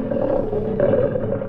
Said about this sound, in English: A Bengal tiger, name's Prince Rajput, weight 462 pounds, 9 feet 7 inches long. A well-behaved tiger. Doesn't quite understand what he's doing in New Hampshire, but he's eating better than in the jungle.